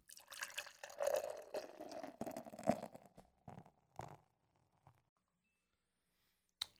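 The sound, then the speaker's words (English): Hazy IPA beer (Alesmith for Hope from Alesmith Brewing Company) being poured into a glass, a steady glugging stream for about four seconds that tapers into a few scattered drips, then a sharp click after a pause. “Let's get this pour out. This is a hazy IPA Alesmith for Hope from Alesmith Brewing Company.”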